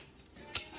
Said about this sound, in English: You hear that lighter flick? You already know.